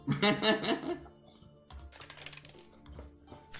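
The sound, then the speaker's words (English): Dice rolled for combat clatter and tumble across a hard tabletop in a quick series of sharp clicks and rattles, following a brief burst of voice at the start. “If we want to roll for combat.”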